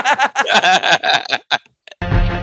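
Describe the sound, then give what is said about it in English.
Dense, loud intro music with a heavy bass line and a ticking clock kicks in abruptly near the end, following a brief pause after a stretch of busy, voice-like sound. “I think that's our intro.”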